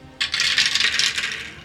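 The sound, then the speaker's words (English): Ten six-sided dice clatter and tumble across a hard surface in a dense, rattling burst that lasts about a second, then trails off, rolled for fire damage in a game. Fairly loud, with no talking. “So, Don't you want to roll 10 dice?”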